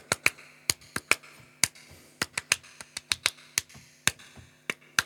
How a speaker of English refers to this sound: You know, clap your hands. Or first, only clap the rhythm.